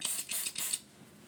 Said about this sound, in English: Let me spray some more pumpkin spice.